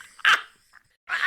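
A dog barks twice, loud, with a brief pause between the two sharp barks; no one speaks.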